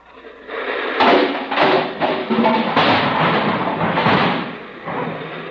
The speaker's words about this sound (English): It's a miserable night. It's raining a regular California rain. Out here, it rains the hard way. The hard way. Up. Just listen to that rain.